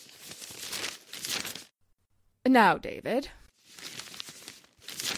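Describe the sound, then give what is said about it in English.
Newspaper pages rustle and crumple in noisy bursts, stopping briefly while a man speaks a few words, then crinkling again right after. “Hey, who's been messing up my paper?”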